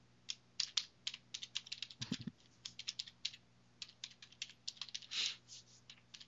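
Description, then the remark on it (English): Rapid, irregular keyboard typing with sharp clicking keystrokes in quick bursts, clear, over a faint steady hum; no one speaks. “Should have taken typing in high school.”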